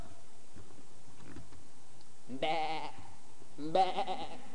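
Two wavering sheep bleats, one after the other about a second apart, each loud, following a stretch of faint low background noise.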